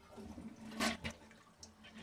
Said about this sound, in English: I'm like, well, you're sitting on the toilet. I'm sitting on the toilet. One last flush for the audience. 3, 2, 1.